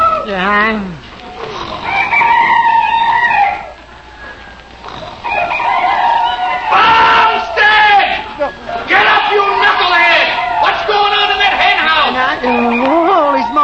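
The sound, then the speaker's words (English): A flock of hens and roosters squawks and clucks loudly before 6 o'clock in the morning, waking everybody. Overlapping cackles and wavering high-pitched calls rise and fall almost continuously, with a few brief lulls and at least one rooster crow among them. “Get out of bed and stop that battalion of feathered alarm clocks from sounding off.”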